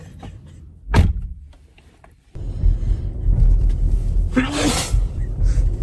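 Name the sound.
sneeze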